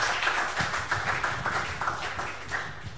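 An audience clapping their hands together for the Lord, a dense, steady patter of many claps filling the whole stretch with no voices over it.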